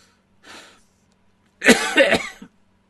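A man coughs: a soft, short breathy rasp, a brief pause, then a loud burst of several harsh, rough coughs in quick succession before it falls silent.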